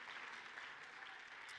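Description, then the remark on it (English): An audience claps their hands together to thank the Lord, a dense, steady wash of many overlapping claps with no single beat standing out, sustained evenly throughout. “I think we just need to clap our hands and thank the Lord that we understand not only how he blesses us, but we understand who he is.”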